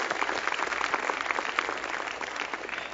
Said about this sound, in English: You may give your clap offering unto Father, Son and Holy Spirit this evening. Thank you, Lord.